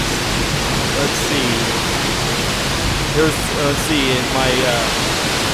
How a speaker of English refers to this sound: So this, you know, this is still a good, heavy, soaking rain. I mean, it's raining hard, like, you know, full-on shower hard for this entire time, the last 20 minutes or so. This is a gully washer.